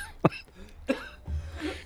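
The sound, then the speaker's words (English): A man gives two short, sharp coughs about half a second apart, fairly quiet, during a Zoom video call, followed by a low muffled rumble of background noise. “Oh my God, he's coughing.”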